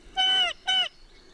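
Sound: bird's alarm call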